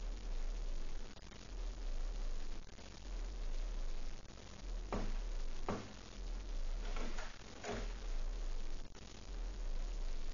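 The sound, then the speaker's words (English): Several slow, evenly paced footsteps of a man approaching the front door thud over a steady low hum and hiss, growing a little louder as they approach, then fading back into the background noise. “Footsteps. Someone's coming to the front door.”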